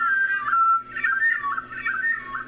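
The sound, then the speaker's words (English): A hermit thrush song slowed to half speed: a run of pure, flute-like whistled notes gliding up and down in pitch, steady and fairly loud, with no voices. “Oh, to be a hermit thrush for a day, to hear as they hear.”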